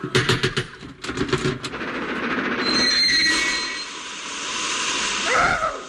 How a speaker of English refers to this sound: Oh, puff-puff train.